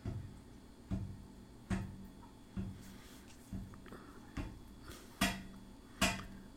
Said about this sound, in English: Well, there's that knocking radiator that I turned off but still makes noises. What is it, haunted? Is steam just ghosts?